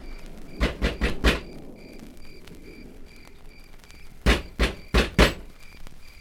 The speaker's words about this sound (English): Doesn't seem to be a bell. Well, use your knuckles. Knock.